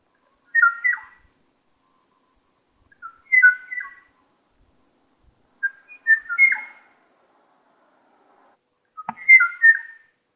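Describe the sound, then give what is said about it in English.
A male Kauai O'o bird, recorded in 1984 by James Jacoby and the last of its kind, calls for a female in four separate bursts of clear, whistled notes spaced a few seconds apart, each a short fluting phrase ringing out against deep silence with no reply. “In 1984, James Jacoby recorded this kawaii o-o bird. It's a male calling for a female, but he never gets a response.”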